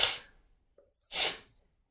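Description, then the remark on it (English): A loud, wet gulping swallow, heard as two sharp, hissy bursts about a second apart with a tiny click between them, with no talking over it. “Ew, I just swallowed right into that. That was the most disgusting gulpy sound.”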